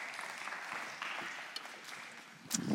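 An audience applauds in a steady, dense patter of many hands clapping at once, sustained throughout at a moderate level with a few sharper claps near the end.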